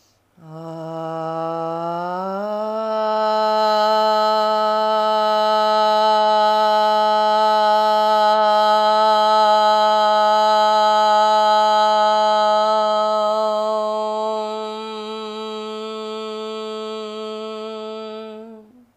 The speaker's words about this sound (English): Finishing today, chanting the sound of one Om together. We'll inhale together and on the exhale, we chant Om. Inhale.